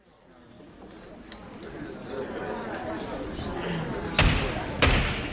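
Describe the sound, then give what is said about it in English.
Judge John Peck's gavel cracks twice in quick succession, sharp and fairly loud, calling a trial to order and cutting through the steady murmur of a crowded courtroom that has been chattering beforehand. “With the crack of his gavel, Judge John Peck called the trial to order.”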